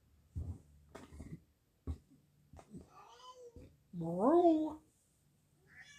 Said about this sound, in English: That's Godzilla the cat. And you don't think it is until you hear him, like, boom, boom around the house.